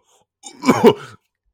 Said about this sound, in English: Like I'm sorry, guys. I've been muting my mic because I've been coughing because I woke up in the morning and then.